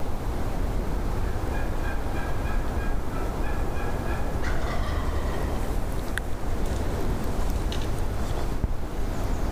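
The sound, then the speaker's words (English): A wild turkey gobbles close by during a hunt, a loud rapid rattling call repeated in a couple of bursts over a steady, rushing outdoor background noise, with no one speaking. “after that turkey gobbled so close to us, but I'm going to guess, judging by my answer, that he asked if I could see him.”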